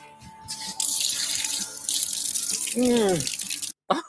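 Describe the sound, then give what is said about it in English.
Water gushes steadily from an outdoor garden tap, installed for watering the garden: a loud hissing flow lasting a few seconds, with a brief wordless voice rising over it just before it abruptly cuts off. “And finally, a tap is installed so that we can water the garden.”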